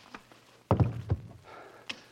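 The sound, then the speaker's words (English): A heavy blow knocks a man unconscious, landing with a sudden, dull thunk, quickly followed by a second softer thump and, moments later, a brief faint tap. Fairly loud, with no voices. “You knocked him out.”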